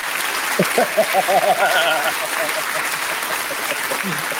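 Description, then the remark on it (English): An applause sound effect: a burst of crowd applause, dense and steady clapping filling the whole stretch, with a few voices cheering briefly near the start before the clapping carries on alone. “I would do a round of applause, but I'm holding my phone up right now.”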